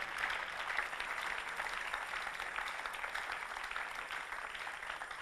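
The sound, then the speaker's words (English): A crowd applauds steadily for the full five seconds, a dense, even patter of many hands clapping at moderate volume with no voices standing out. “When clapping is coming, that means you have to close.”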